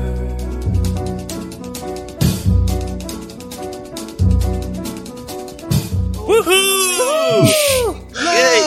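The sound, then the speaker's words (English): After several seconds of rhythmic, bass-heavy music, a voice lets out a rising and falling wail, imitating the howl of a Lovecraft creature with loud, swooping, quavering pitch bends. “I was trying to think of what a Lovecraft creature would make, noise would make. It's kind of a howl or a wail.”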